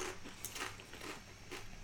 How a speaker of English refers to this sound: There's a barbecue chip. It's not bad.